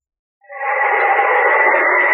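A howling wind sound effect evoking winds across the snow-covered reaches of the wild northwest, in a Quaker Oats Company radio presentation with the Mutual Broadcasting System, rises from silence into a steady, loud, hollow rush that holds without letup, with a thin, band-limited quality like an old radio broadcast.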